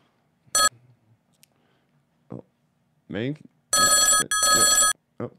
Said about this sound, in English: It's fucking only ringing once and then hanging up. Is it breaking? I'm not so sure it can handle this load.